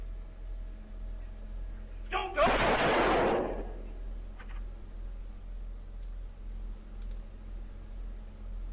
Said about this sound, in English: That is disturbing. They shot him 5 times. I only hear 3 in the video, but he had 5 bullets in him.